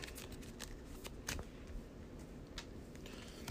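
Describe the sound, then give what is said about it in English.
The encounter deck of a card game is shuffled, a quick run of crisp riffling clicks and rustles with a few sharper snaps, lasting a few seconds with no voices. “After I reveal the engine card, search the encounter deck and discard pile for another grappling whore and draw it, and then shuffle the encounter deck.”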